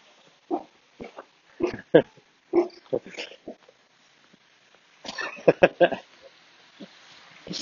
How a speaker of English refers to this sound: Good girl. You're a terrible guard dog. Come on. You can't woof and then be nice.